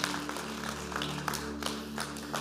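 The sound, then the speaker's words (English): Applause from the Real Life audience for everyone who made a decision for Jesus: scattered claps rising out of a steady low hum and a wash of noise, fairly quiet and even throughout with no voices. “Real Life, can we give everybody that's in that situation just a huge round of applause?”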